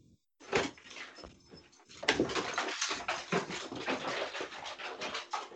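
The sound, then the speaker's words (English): Dogs, including a dog named Cerberus, bark and yelp in a loud, rapid, jumbled burst, mixed with scuffling and door-like clatter, after a brief quiet start, as a dog is let out of a room. “They're barking and stuff.”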